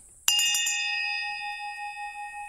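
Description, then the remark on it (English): A hand bell is shaken in a quick burst of four or five strikes, then its bright metallic tone keeps ringing and slowly fades, loud with no voices. “All right, I'll give the bell a ring and see if anyone shows up.”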